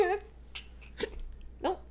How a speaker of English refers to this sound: Oh, you hiccuped up. You hiccup while you're holding your breath. I don't know if that counts.